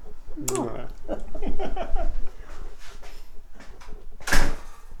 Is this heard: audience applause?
no